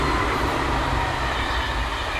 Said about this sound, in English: Oh, there's another train coming from Rotterdam and The Hague.